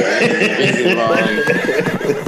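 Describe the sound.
A horse neighs loudly, a drawn-out, quavering whinny lasting a couple of seconds with shaky rises and falls in pitch.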